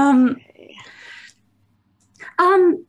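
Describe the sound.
A person's voice imitates a bird call: a loud, tonal hoot, a breathy rasp, a short silence, then a second hooting call. Clear, with no other talking.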